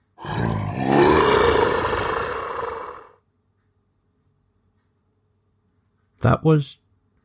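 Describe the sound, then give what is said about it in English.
A loud, terrifying roar rumbles for about three seconds, then cuts off into silence. After a pause, a brief vocal sound follows near the end. “Then a terrifying roar fills the night.”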